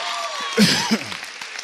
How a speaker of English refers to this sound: You can clap. I'll let you clap.